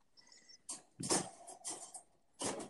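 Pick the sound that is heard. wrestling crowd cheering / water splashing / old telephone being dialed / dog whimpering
dog whimpering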